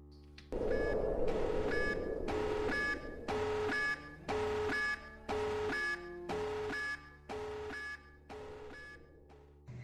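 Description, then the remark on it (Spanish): An alarm, set off when enemy soldiers discover a sniper's body, blares in loud, steady pulses, roughly one per second, each a harsh electronic tone with a buzzy edge, repeating about nine times over a low background rumble with no voices. “Su munición escasea, el miedo aumenta y la esperanza de salir de ahí se va con el sonido de una alarma.”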